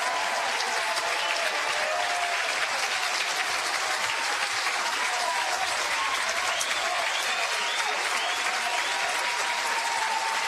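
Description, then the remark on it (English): A large stadium crowd at a game rises to its feet, applauding and cheering steadily for about ten seconds as pitcher Montana Fouts reaches an 0-2 count in the bottom of the sixth; a dense wash of clapping and shouting with scattered voices rising above it. “Crowd to their feet.”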